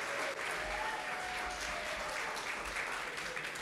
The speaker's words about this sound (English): Could we give them one more round of applause?